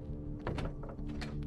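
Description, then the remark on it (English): A heavy body-like thud as a person falls out of bed onto the floor, followed by a few softer knocks and shuffles over a steady low hum. “Did you fall out of bed? Her mother, who'd heard the thud from downstairs, stepped into the room and stared at the mound on the floor.”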